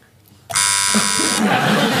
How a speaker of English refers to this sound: I buzz in, she tells me it's true. It's a relationship.